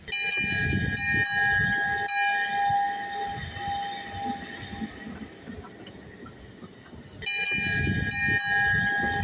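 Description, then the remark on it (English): A Festiniog Railway locomotive stands idling, giving off a steady, loud hiss with a sustained whine and low rumble that eases in the middle before swelling again, with no voices. “Namesake of the locomotive, which we have standing here behind us.”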